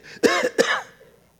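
A person gives two quick coughs about a third of a second apart, each rough and throaty like clearing the throat, then the sound trails off into quiet.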